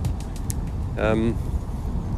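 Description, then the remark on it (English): A single brief seagull cry rings out once over a park, a short harmonic squawk that dips in pitch, over a steady outdoor rumble. “The misdirected seagulls are over the park.”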